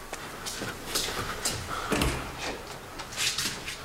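An apartment door being opened after the doorbell rings: a quick series of sharp latch clicks, rattles and thumps over a few seconds, moderately loud, with no one talking.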